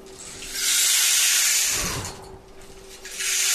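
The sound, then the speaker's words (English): A rain stick pours out a steady, bright, hissing patter of tiny pellets. It swells, briefly thins after a low knock, then surges back, with a faint steady hum underneath. “So this is a rain stick.”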